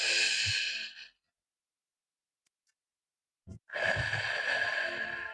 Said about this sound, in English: Let's take a deep breath all together and let it out. Let's do that one more time at our own pace, breathing in and out deeply and enjoying the feeling.